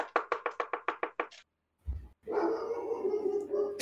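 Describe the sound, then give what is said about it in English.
A quick run of about nine sharp, evenly spaced barks, a brief dull thump, then a sustained stretch of dense, overlapping barking and howling from two dogs, with no one talking. “My dog literally. And the neighbor's dog.”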